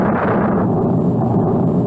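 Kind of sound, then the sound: nature, thunder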